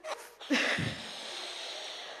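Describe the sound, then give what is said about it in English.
A man blows air into a balloon: a short breathy puff and an inhale, then one long, steady, airy rush of breath that holds at an even loudness to the end. “So here we have our balloon, and it's God, you know, breathing his very life into us that increases our capacity.”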